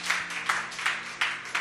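A crowd of people clapping their hands unto the Lord in a steady rhythm, a dense wash of claps with regular accented beats, moderately loud and with no talking.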